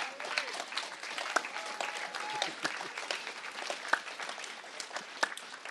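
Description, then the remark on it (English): A crowd applauds steadily for several seconds, a dense wash of many hands clapping at an even, moderate loudness with a few sharper individual claps standing out. “You can clap.”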